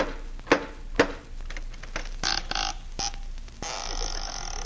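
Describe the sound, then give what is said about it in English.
Costello knocks twice on the door of Peter Lorre's home, about half a second apart, followed by scattered clicks and thumps and then a steady hissing noise. No one speaks. “No, I knocked.”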